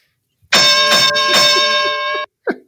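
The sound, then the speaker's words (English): A wrestling ring bell is struck rapidly over and over, its loud, bright metallic ring sustained for under two seconds before cutting off abruptly; a brief voice follows. “Ring the bell now.”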